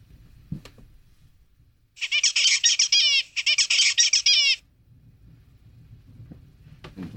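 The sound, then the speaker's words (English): An adult male zebra finch, the father of a young finch learning to imitate his song, sings two bright, buzzy phrases in quick succession, each made of rapid harmonic chirps and squeaks, loud, with quiet background rumble before and after. “Here's a baby zebra finch trying to imitate his dad's song.”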